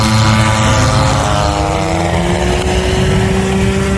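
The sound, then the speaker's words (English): A small banner-towing propeller plane passes right by a house, its engine droning loudly for the whole stretch, pitch shifting and wavering as the engine stops. Nobody speaks. “That sound of an engine just stopping right there is heartbreaking.”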